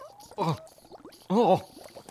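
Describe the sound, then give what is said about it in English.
Two short bursts of wobbly, warbling gurgling, like liquid frothing and bubbling up, each lasting about a quarter second with a quieter fizzy murmur between them. “Oh, well, I mean, it's starting to foam up like... Like bubbles in a...”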